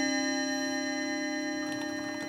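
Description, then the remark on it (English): A domestic chiming clock sounds the half hour with Westminster chimes, ringing one sustained, bell-like tone with rich overtones that slowly fades, while faint ticking clicks appear near the end. No one speaks. “Domestic chiming clock for a half hour.”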